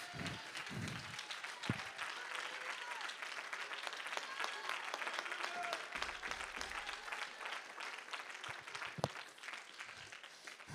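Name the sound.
audience clapping hands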